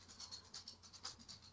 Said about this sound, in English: What is the dog doing? Yeah, just walking around. A crazy dog. It's like a dinosaur, man. I'm telling you. Yeah, I was like, is there a raptor in the house?